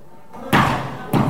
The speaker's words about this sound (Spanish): Esos son los golpes en los vidrios de la Asamblea Legislativa.